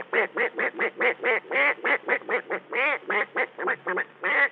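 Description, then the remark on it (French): A person imitates a duck, voicing a rapid, steady string of about eighteen nasal quacks, fairly loud, with no other sounds around them. “Le canard.”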